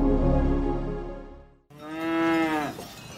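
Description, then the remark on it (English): Two long, loud cow moos on a mountain follow one another, the first deep and droning, the second higher and more tonal, each swelling and fading with no talking over them. “I appreciate that beginning a business podcast up a mountain with some cows is an unusual start, but then some CEOs have unusual starts.”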